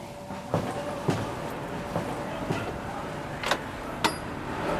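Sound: someone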